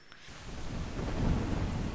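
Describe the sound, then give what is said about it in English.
Steady rain pours down while a deep rumble of thunder swells and rolls underneath, growing louder through the middle before holding at a full, dense roar. “I just did Rainy Mood.”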